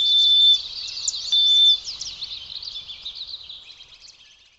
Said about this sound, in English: Chittering swallows signal their discovery of a hatch of river mayflies. From the winter underbrush, sparrows give quiet calls.